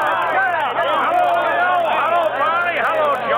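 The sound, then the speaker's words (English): A crowd of henchmen lets out a loud, sustained cheer greeting a man who has stepped off a train and waves to them, many voices overlapping into a dense roar that holds for a few seconds with slight swells and dips. “As he waves his big hand to the crowd, he's greeted by a loud cheer from his henchmen.”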